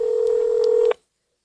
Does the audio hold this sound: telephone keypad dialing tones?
yes